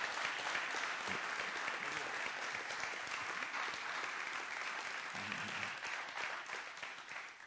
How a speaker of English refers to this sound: And so can all the West Point folk in the room give a big round of applause to the Sarepta folk to say thank you.